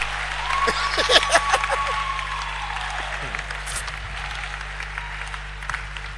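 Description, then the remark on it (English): A church audience claps steadily to welcome the speaker, a dense patter of many hands with a few louder claps near the start, then gradually thinning out, with a faint murmur and a low steady hum underneath. “Is it clapping to make me feel welcome? You clap well.”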